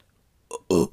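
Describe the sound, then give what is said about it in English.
A short, forced burp, loud: a brief throaty catch, then a fuller, raspy belch lasting about a quarter second before cutting off. Nothing else is audible around it. “when you burped at the beginning, it was so fucking funny”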